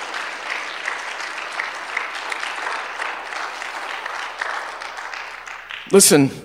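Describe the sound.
An audience claps steadily in sustained, even applause for several seconds, giving the Lord a hand clap of thanksgiving and praise, then a voice abruptly breaks in loudly over the end of the clapping.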